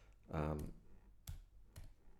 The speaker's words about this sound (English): …, this is me typing up to look for the lyrics.